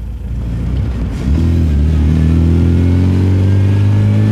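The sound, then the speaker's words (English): An MG British sports car engine idles with a low rumble, then revs up sharply and holds a loud, steady roar with rising harmonic pitch, with no voices. “That music came to America, and with that music came British sports cars.”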